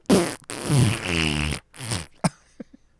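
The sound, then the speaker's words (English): A loud fart sound effect used as a spoiler alarm: one long, buzzy, wavering blast lasting about a second and a half, followed by a few short sputtering pops, with no talking. “Here's the spoiler the alarm. Spoiler fart alarm.”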